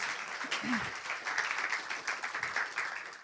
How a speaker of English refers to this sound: Thanks, guys. Come on, give them a clap. That's great.